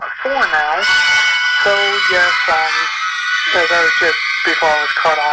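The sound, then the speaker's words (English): A loud, continuous alarm rings steadily through the whole stretch, its shrill tone never letting up while a man keeps talking over it. “That's the alarm.”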